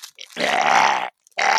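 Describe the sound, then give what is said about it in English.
A person lets out two loud, throaty grunts while unwrapping a large, heavy present: a long strained one lasting most of a second, then a brief pause before a second grunt begins and is cut off. “No, that's the sound I make when I unwrap presents.”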